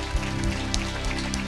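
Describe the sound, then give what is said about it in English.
A church audience at Release City Church claps together in a morning hand clap of praise for Jesus Christ, a dense, steady wash of applause that holds at an even loudness throughout, with a faint low sustained tone underneath and no clear voices. “Can we give Jesus Christ a hand clap this morning?”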